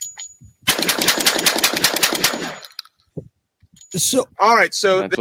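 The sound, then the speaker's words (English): A shotgun fires a fast, loud string of blasts without its Silencer Co. Salvo suppressor at a shooting range, shots nearly blurring together for about two seconds in a speed dump, followed by a pause and then people talking. “New Salvo suppressor, as you can see the camera here, what it sounds like to shoot without the suppressor, and then I'll do another 9-round speed dump with the cannon.”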